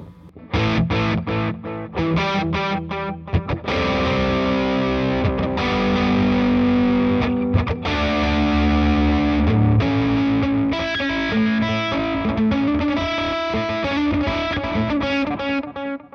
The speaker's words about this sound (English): The delay in front of distortion sounds like this, and using a Boss TD2.